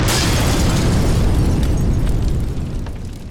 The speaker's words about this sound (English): he abandons the remaining students and tosses a lantern on a pile of explosives as he runs from the house. John and Maggie leap from the window into the sea just before the house explodes as the professor races away in a speedboat.